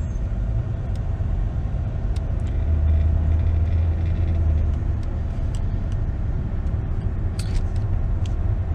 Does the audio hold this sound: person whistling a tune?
no